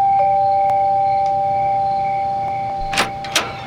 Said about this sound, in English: Maybe it's this house. All right. Ring the doorbell.